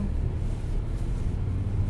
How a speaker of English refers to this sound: Wow. There's normally not so many cars in front of my little house. Today there were.